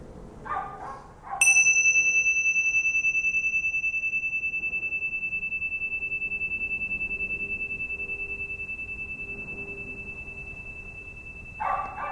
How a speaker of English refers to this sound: what you're doing is you're listening to the sound of the bell moving through time, or time moving through the sound of the bell, one or the other. Listen.